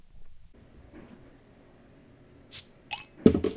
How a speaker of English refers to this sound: Is it the bottle's actually open now? The bottle's actually open.